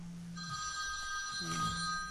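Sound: telephone ringing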